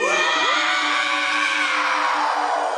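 A loud, sustained human scream fills the whole stretch, harsh and strained with shifting pitch, unbroken for nearly three seconds with no talking.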